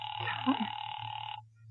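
A single ringback tone on a phone line as a call rings through to the police department, steady and slightly buzzy for over a second before cutting off, with a low hum running underneath throughout.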